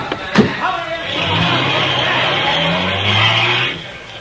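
A sharp slam, then a car engine revs hard and roars as the vehicle pulls away fast, its loud rumble and hiss filling the scene for a few seconds.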